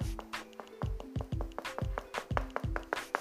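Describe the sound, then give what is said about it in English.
A rapid series of sharp knocks, about a dozen in quick succession, fairly loud over a low, steady musical tone. “Hey, that's a knock on your heart, says God.”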